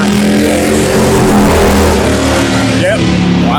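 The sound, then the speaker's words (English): A vehicle accelerating hard as it passes at about 60 mph, its engine roaring loudly and steadily for a few seconds, with a rising whine near the end. “That was a solid 60 mile an hour.”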